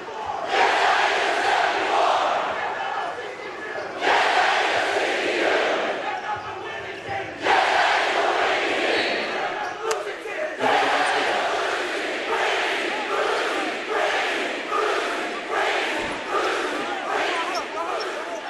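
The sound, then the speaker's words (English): A large Utah State student crowd chants "winning team, losing team" in loud rhythmic bursts, shouting the phrases in unison that swell and break off repeatedly, with roaring voices filling the gaps between chants. “where they scream winning team, losing team, and of course a one person chant is so lame, but scary”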